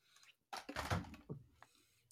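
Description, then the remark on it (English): A door opens with a brief rattling rush, then swings shut with a soft low thud and a lighter click after it, all fairly quiet, with no voices. “I hear the door open and close.”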